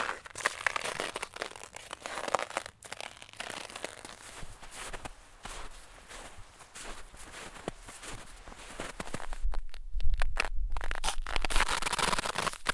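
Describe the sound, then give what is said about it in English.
Steady footsteps crunch through snow, a repeated crisp crackle, with a deeper, heavier stretch of low rumbling near the end. “Even the lapse of an hour can alter it profoundly, and the experienced listener can pinpoint the temperature by the sound of his footsteps in it.”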